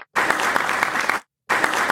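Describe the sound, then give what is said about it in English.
Two short bursts of dense, crackling applause, the first lasting about a second, then a brief gap of silence before the second begins and is cut off. Steady loudness, no voices. “What were those for? The short claps?”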